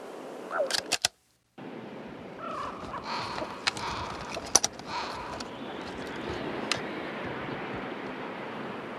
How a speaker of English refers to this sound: Columbus Circle. Flock of birds. Blackbirds over the park, circling. More birds now, flying over the white marble bones of Lincoln Center.